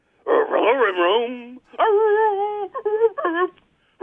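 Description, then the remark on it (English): A voice imitates a dog, with drawn-out whimpering whines that rise and fall in pitch, followed by a few short, yipping barks, loud and close with brief pauses between. “One of the best people to call this show is not actually a person at all, but rather a dog.”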